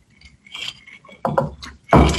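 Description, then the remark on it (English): Glasses clink together in a toast, several bright chimes and knocks in quick succession, ending with a louder, fuller clash of glass. “And cheers, everybody. Cheers.”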